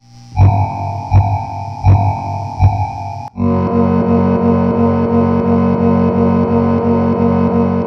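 A modified Yamaha E70 home keyboard, plugged directly into the board in a studio, plays a processed, distorted melody over a steady electronic beat; after a brief pause the rhythm, made by a filter in the modified section, turns denser and filtered, with evenly spaced pulses under sustained tones. No voices.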